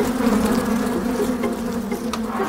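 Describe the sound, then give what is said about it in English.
A dense swarm of agitated bees buzzes loudly and continuously, a thick droning hum that wavers slightly as insects pass by, after their occupied hive was knocked by a thrown stone. No voices are present. “seeing those elephants running away from real, really disturbed bees”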